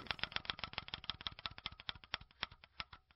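A prize wheel with victim and perpetrator segments spins with rapid, sharp clicks that gradually slow down, the ticks spacing out and growing farther apart as the wheel loses momentum over about three seconds.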